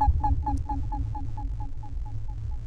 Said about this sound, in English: So how would we... This is all kind of the same pitch coming out of... We have two pitch outputs going to the frequency inputs on the 158. But sounds like section B is the same note, or am I just mishearing that? That beep, beep, beep, beep.